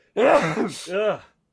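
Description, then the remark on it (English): A single loud, voiced sneeze: a rising, strained intake, a sharp hissing burst, then a falling vocal tail, about a second long and alone. “excuse me. Bless you.”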